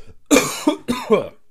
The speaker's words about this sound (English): Excuse me, guys. There won't be any coughing in the next one, don't worry.